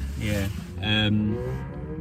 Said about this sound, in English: Yeah, well, if you can hear all that noise around, we're sat in the car park, and there's loads of kids burning round on mopeds and cars and that.